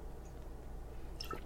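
A quiet, brief wet sip of beer, a soft slurp with small liquid clicks near the end, over a low steady background hum with no talking.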